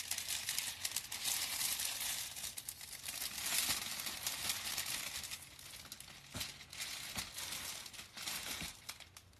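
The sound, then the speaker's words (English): Continuous crinkling of foil wrapping paper, a bright rustly texture with occasional sharper crackles and snaps as the sheet is handled, steady throughout with no voices. “The paper's really cool, though. It's like foil.”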